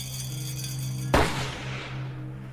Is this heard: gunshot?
yes